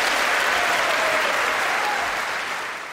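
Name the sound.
audience applause and cheering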